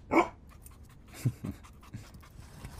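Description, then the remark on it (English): A dog named Bruce, having run from another room to the back door, pants in quick, breathy bursts, opening with one louder huff and followed by softer, uneven breaths at a low level. “Bruce came running from the other room and went straight to the back door.”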